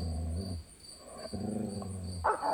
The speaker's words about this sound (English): Guard dogs! I figured they'd have dogs here.